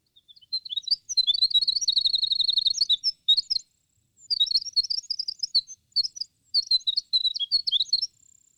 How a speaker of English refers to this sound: But at normal pitch, he sings so high and so rapidly that we miss almost entirely the fantastic intricacies of his little song. This is the winter wren.